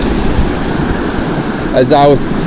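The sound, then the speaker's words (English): Fast-flowing river water rushes in a steady, dense hiss throughout, fairly loud, as someone fly fishes the current in pouring rain, with a brief voice breaking in over it near the end. “All right, now I'm just gonna throw it straight into the fast water”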